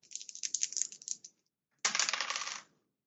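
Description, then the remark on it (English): Dice rattle and clatter across a table in two loud bursts: a scattered run of sharp clicks, a brief pause, then a denser tumble that settles quickly. No one speaks. “Oh man, the dice are hot today.”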